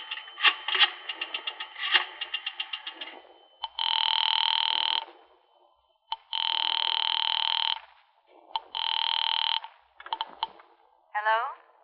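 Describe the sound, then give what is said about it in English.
A telephone rings in three long, steady bursts with short gaps between them, following a quick run of clicking like a number being dialed. It sounds clear. “Mind if I use your telephone?”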